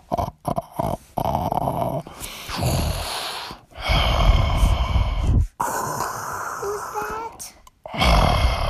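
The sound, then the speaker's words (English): A voice imitates the storybook character Froggy snoring as he goes to sleep at the end of Froggy Goes Swimming: loud, raspy snorts and growling rumbles in several long bursts, broken by brief pauses for breath. “That's how it sounds when Froggy goes to sleep. He just kind of snores like that.”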